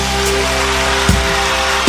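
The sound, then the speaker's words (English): A dense, steady wash of crowd applause fills the whole stretch, hissy and even like heavy rain, with a low humming tone underneath and a couple of brief thumps near the end. “Would you do me a favor and give a round of applause”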